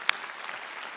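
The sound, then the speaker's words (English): A church audience applauds for Jesus with hand claps, a dense, steady patter of many hands filling the room, with one sharper clap standing out near the start. “Come on, can we give Jesus a hand clap for that?”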